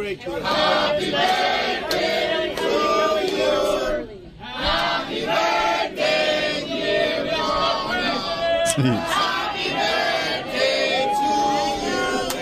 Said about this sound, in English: I've heard this. That's the crowd in Miami singing happy birthday to former President Donald John Trump.